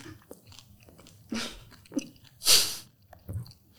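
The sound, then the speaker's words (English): Crunchy chewing of a big mouthful of chocolate and bacon pancakes with crispy bacon, with several distinct crackling bites in an uneven rhythm, the loudest crunch near the middle, and no talking. “Oh, you can hear the crunch of that bacon.”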